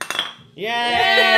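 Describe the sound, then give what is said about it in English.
Glass bottles clink together a couple of times in quick succession in a toast, bright, before a louder, drawn-out sustained sound takes over. “Cheers. Best stepdaughter. Do we need bottles? I'll do that then. Oh, just grab that bottle. Let's just do it.”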